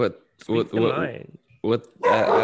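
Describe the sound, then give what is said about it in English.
Dogs bark in a few loud, irregular bursts, some barks running together into short yappy volleys with brief pauses between them. “While you get your dogs”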